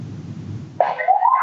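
A siren wails in over a low background rumble, its steady tone sliding slowly upward in pitch and holding fairly loud through the end.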